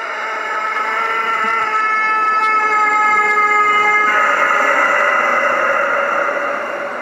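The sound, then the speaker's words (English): An eerie, drawn-out rooster crow in a garage-like mechanic shop somewhere in Brazil, with heavy echo from the shop's acoustics, not slowed down, holding a steady, siren-like harmonic tone for about seven seconds before shifting pitch partway through. It is loud, with no talking. “It's somewhere in Brazil, but listen to this creepy rooster crowing.”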